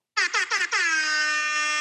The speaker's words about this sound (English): I need to get that air horn on my button pad. I need to take out one of these things and put air horn in. Maybe even like boat fog horn.